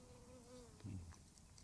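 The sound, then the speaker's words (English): A bee buzzes with a steady droning hum that swells briefly louder as it comes down, then fades off again as it takes off, with no talking. “As soon as you said that, a bee came down like that and then took off.”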